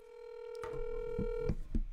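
A phone call placed to a recruiting analyst of Dogs 24/7: a steady telephone tone hums for over a second, broken by a few short dialing beeps and clicks at uneven intervals, moderately loud with no voices.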